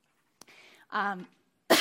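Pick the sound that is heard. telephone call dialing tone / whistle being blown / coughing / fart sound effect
coughing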